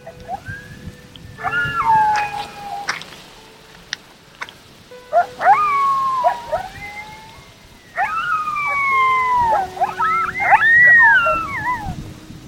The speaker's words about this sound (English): A couple seconds later, a pack of coyotes joined in, and I could tell that they were just about 50 yards over the hill from where I was.